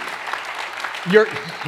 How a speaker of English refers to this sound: You're clapping for yourself. When I say sinners, start with me.